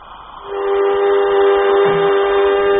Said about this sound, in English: Now, let's see. Airlock, contact. As she begins to fill up, we should hear it. I think I can, Jet. Yes, and the gauge is rising, too.